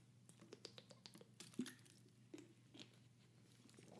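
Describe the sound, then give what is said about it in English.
Quiet sipping of a non-alcoholic drink in a fairly empty house in Florida around 2 p.m.: a run of small wet clicks and lip smacks, followed by a couple of soft swallows, with no talking. “I'm going to take a delicious sip.”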